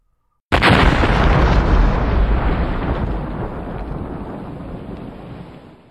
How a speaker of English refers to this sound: An explosion like a bomb going off. The truck ship had hit the ground. The concussion rolled over us like a tidal wave of air.